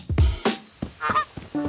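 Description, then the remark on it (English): A goose honks several times in quick, uneven succession, with harsh nasal calls that sound fairly loud, and no one talking. “Mother Goose was not very impressed with her surprise snack.”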